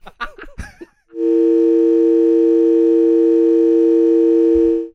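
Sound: telephone call tone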